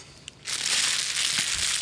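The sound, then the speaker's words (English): A wrapper is crumpled right against the microphone, a loud, dense crackling burst that starts abruptly and continues steadily for over a second, with no voices. “Yeah, crumple the wrapper into the mic.”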